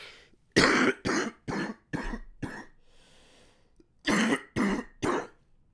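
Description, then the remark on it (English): A loud fit of coughing and throat clearing: five sharp bursts, a brief breathy pause, then three more harsh coughs in quick succession, with no talking. “Oh, I got to cough again.”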